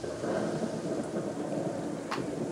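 A low, continuous rumble of thunder rolls steadily throughout, dense and broad with rain-like hiss on top and a brief sharp crackle near the end.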